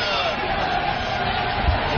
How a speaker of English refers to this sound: Is Artie right there? I don't know. I just heard a bunch of people yelling Artie.